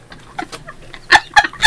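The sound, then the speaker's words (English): Short, honking bursts of nose blowing into thin toilet paper, a few soft puffs followed by three louder, sharp blasts in quick, uneven succession, each with a slightly squawky, clucking tone. “Got to blow my nose.”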